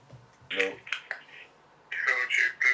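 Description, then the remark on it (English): A phone rings for an incoming call, its bright electronic tone sounding in several loud bursts, with a faint voice murmuring low underneath. “Oh, shit. Oh, my God. Phone call, guys.”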